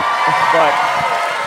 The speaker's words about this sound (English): So, the crowd is very familiar with you. Huge applause.